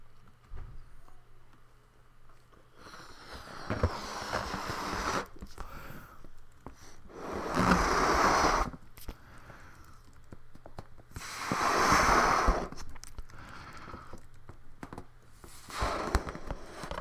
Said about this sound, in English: So right now I have a balloon in my mouth, so I'm going to blow the balloon up.